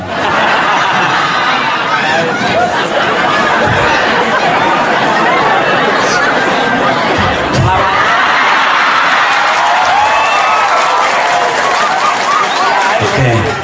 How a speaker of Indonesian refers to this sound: Begitu saya berdiri, ibu-ibu, mbak-mbak langsung sorak.